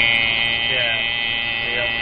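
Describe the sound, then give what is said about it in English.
A voice imitates the steady, buzzing hum of an AM radio tuned to a Spanish station in New York City. It holds one droning, slightly wavering tone for about two seconds, fairly loud, with no words. “But it always had that fucking hum, that.”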